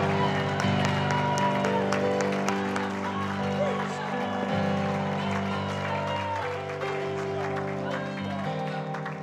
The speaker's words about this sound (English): And somebody clap your hands joyfully and give God a shout of praise one more time. Hallelujah.